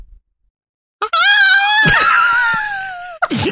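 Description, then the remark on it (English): A person imitates an emerald forest rooster's crow with one long, shrill, strained cry lasting about two seconds that slowly sags in pitch, followed by a short breathy gasp, with silence beforehand. “You hear an emerald forest rooster caw waking. And it sounds like”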